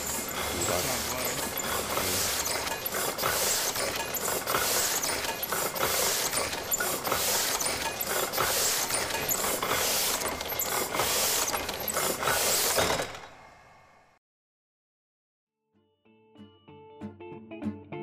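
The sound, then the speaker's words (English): An old printing press runs loud, its gears and rollers clattering in a steady, rapid rhythm for about thirteen seconds before abruptly stopping, followed by silence and faint tones. “But the noise, yes, definitely would be very, very strong. And nearly everybody that came out of the printer works is deaf.”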